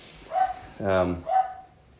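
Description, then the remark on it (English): Una, a little puppy, barks three times in quick succession, with a longer, deeper middle bark between two sharper, higher ones, clear against a quiet background. “That's Una having a bit of a bark.”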